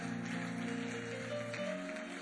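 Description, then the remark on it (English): An audience claps their hands in a steady, dense wash of applause, mixed with sustained musical tones underneath, holding at an even, moderate loudness throughout. “If you would clap your hands as you see what happens here.”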